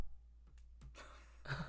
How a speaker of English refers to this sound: You're going to make me go into a coughing fit, dude.